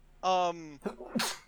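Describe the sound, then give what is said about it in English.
A single loud sneeze from a person: a rising voiced intake builds for about half a second, then breaks into a sharp, hissing burst. “Sorry, I had to sneeze.”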